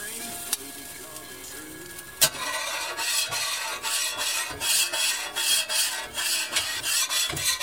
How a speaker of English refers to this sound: Just finished making 10 grilled cheese sandwiches on the Blackstone griddle. I'm just giving it a little cleanup here. A bit of a spritzer with the water. And my spatula here, just give it a little scrape, get the crusty bits off.